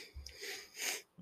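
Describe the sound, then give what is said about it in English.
Two quick, airy sniffles into a microphone, a breathy intake of air through a stuffy nose, one after the other with no talking. “one thing I have noticed about Indiana, as I'm sniffling into the microphone, they don't know how to fucking remove snow.”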